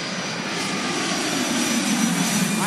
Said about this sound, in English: And first off, where's our plane sound? What? Enter the plane sound now.